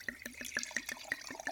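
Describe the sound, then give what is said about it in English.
Wine fermented with pineapple juice glugs out of a bottle into a glass in quick, rhythmic gurgles, fairly quiet, with bright bubbly pops over a steady liquid splash and no talking. “I love pouring wine into the mic.”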